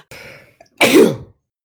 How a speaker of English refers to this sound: No, it's just a sneeze. I swear to God, dude, every single episode, either one of us always coughs or sneezes.